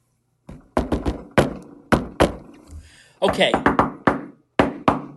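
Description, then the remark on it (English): Sharp knocks on a door tapped out in a deliberate secret-knock pattern: quick clusters of raps broken by short pauses and single knocks, like a coded signal, with nothing else competing. “And don't forget the secret knock.”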